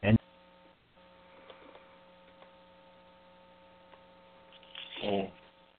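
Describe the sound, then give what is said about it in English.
A phone connection drops out: after a brief clipped blip, the line sits nearly silent with a steady electrical hum and faint ticks, until a short garbled burst of voice returns near the end. “He may have just temporarily lost a connection.”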